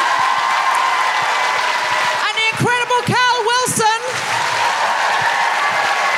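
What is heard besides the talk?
audience applause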